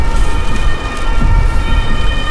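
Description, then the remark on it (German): An ambulance on its way to a house sounds its siren, a steady, high-pitched tone over a heavy, continuous low rumble like traffic or an engine, loud and unbroken for the whole stretch, with no one speaking. “Der Krankenwagen. Hilfe ist auf dem Weg.”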